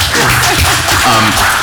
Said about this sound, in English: Yeah, let's clap for representation in Star Wars. Let's do it.